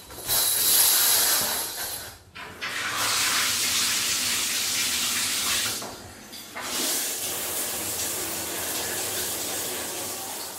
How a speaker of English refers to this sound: Actually, I think right now there should be a shower sound.